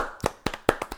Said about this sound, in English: Give yourself a round of applause for making it this far.